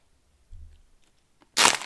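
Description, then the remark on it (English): A low dull thump, then a loud, brief crackling crunch of a plastic water bottle being squeezed, bright and harsh, lasting about a third of a second. “That's a water bottle.”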